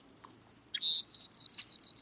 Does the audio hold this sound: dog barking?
no